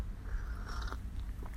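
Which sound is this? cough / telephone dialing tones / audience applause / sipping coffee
sipping coffee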